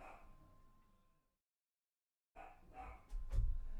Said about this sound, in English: Dog needs to shut up. He doesn't know we're recording in here. Lord, I don't want that getting him riled up.